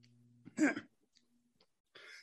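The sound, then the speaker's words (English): A single sharp, loud sneeze bursts out after a low hum, followed a moment later by a softer, breathy rush of air like a sniff or exhale. No one speaks. “Bless you.”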